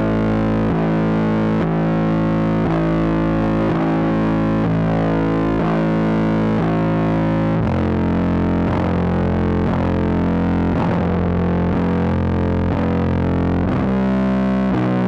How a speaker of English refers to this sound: But it was so shrouded in distortion that you couldn't really hear that it was bass guitar. Yeah. Yeah, that's what I was going to bring up before, because I added bass guitar to it.